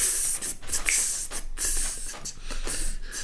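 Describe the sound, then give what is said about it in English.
A voice imitates snake jazz, hissing in rhythmic bursts: a steady run of sharp, bright 'tss' pulses with short gaps, fairly loud and with no talking over it. “O jazz snake, snake jazz, mano. Snake jazz.”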